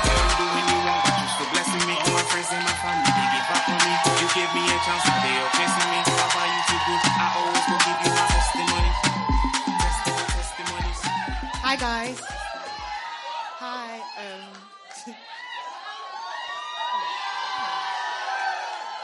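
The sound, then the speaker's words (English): A large crowd claps and cheers loudly, with whoops and shouts over dense, rapid applause and a steady low beat, welcoming a woman up to give her testimony during testimony time; the clapping thins out toward the end as excited voices carry on. “I want you to clap your hands and welcome my sister,”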